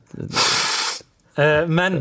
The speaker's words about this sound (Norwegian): Jeg fikk litt angst nå på grunn av den nasen min, som drev å puste.